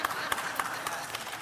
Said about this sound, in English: One honest man in the building cheering and clapped.